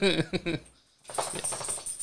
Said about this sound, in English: There's a dog in the background. He's making all kinds of noise. Hi, the wookie dog.